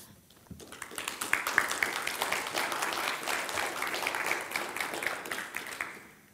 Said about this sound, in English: She's slow rolling it, so you guys keep clapping. It's like she wants a Golden Globes entrance here.